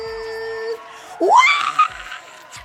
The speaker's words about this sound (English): I'm screaming. Can you hear me screaming?